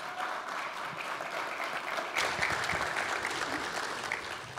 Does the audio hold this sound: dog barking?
no